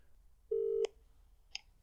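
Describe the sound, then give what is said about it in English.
A single short electronic telephone tone as a prank call is placed, a steady mid-pitched beep lasting about a third of a second, ending in a click, with another faint click moments later. No voices. “We'll prank call that fucking weasel cunt.”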